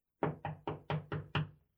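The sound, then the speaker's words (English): Six firm knocks on a door in a quick, steady rhythm, fairly loud, each one a sharp woody thud with a short ring. No one speaks. “Oh, wait, who is that? Oh, hey. I got the door.”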